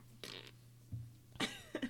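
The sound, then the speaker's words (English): A voice imitates a deflating fart as a mock self-destruct sound: a few short, breathy, sputtering bursts, the last two quick and rising, over a steady low hum with no words spoken. “Oh my god, you fart when you self-destruct. That's the saddest sound.”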